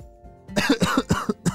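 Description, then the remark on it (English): A quick burst of about five harsh coughs in rapid succession, fairly loud, after a brief quiet moment, with no talking. “As Sid coughed and looked around, he realized that he had been captured by that creature, and there were several others inside of this cave.”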